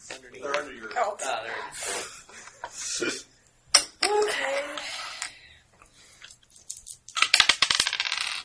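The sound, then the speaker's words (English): Small hard game chips clatter and clink against a table, with a sharp click partway through and a dense rattling burst near the end, while people talk over it. “No, it's three chips. Oh, chips. Two chips.”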